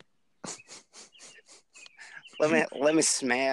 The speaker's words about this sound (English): whistling that song that the birds are whistling now.